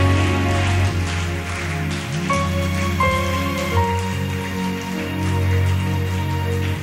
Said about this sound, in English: Begin to clap your hands like you have heard the good news.